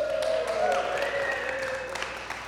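A crowd applauds and cheers for a speaker being introduced, steady clapping with scattered sharp claps, while a sustained whoop or whistle rises above the dense clapping throughout, at a moderate, even level.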